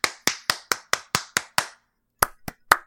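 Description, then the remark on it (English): A steady, quick run of seven sharp hand claps, then a brief pause and three more looser claps. Each crisp and bright, with no voices. “Who is that clapping? That was a different clap.”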